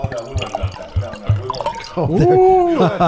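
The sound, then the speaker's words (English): Wine glugs and splashes into a glass on the wine talk show The Winemakers, a few choppy bursts giving way to a steadier stream whose tone rises as the glass fills. “Oh, we had a very busy pour there.”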